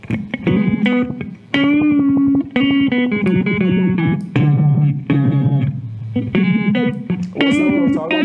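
A loud, distorted tone is chopped into abrupt on-off pulses by a square-wave modulation effect, its pitch stepping between notes in a steady, choppy rhythm with no talking.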